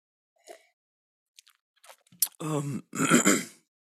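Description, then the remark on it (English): Throat clearing by a person who is under the weather: a few faint clicks and small mouth sounds, then two loud, rough, voiced rasps in quick succession, with no talking. “Excuse me, I am going to be coughing a lot.”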